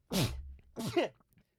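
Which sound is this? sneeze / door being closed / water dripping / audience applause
sneeze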